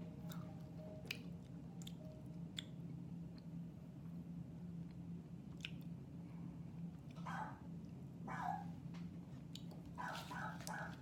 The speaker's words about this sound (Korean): 근데 유튜브다 보니까 나의 최애 영상이 또 나와버렸어. 강아지인데 너무 귀여워. 여기 댓글이 더 귀여워. 이 소리가 안 들린단 말이야?